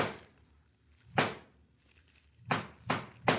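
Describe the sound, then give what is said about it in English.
Knocking on a door at night: the boss's knock as he arrives, a lone rap, a pause, then three evenly spaced knocks. The blows are dull, solid thuds with a sharp attack, and no one speaks. “Yeah, that's his knock.”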